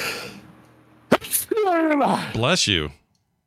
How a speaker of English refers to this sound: That was a long buildup, and I was like, is he going to mute for it? I was trying. That's what I was holding for. I was looking for my mute button. It's hard when you have to sneeze.